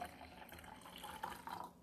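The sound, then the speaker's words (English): A steady stream of tea pours into a cup, a continuous trickling and splashing with a faint rising tone as it fills, with no one talking. “Oh, I'm pouring it.”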